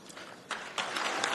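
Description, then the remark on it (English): A short burst of audience applause, a dense crackle of many clapping hands that swells louder partway through and keeps building to the end. “Now, these are the people applauding themselves who want to shut down InfoWars, who want to silence anybody that they disagree with.”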